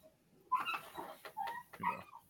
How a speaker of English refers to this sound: No, the dogs. They're talking in the background. Oh, y'all can hear them. I'm wanting to get them shut the door the whole time, but hey, we're almost done.